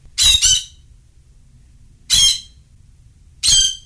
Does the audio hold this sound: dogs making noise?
no